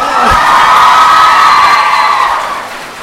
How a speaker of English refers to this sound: And cue applause.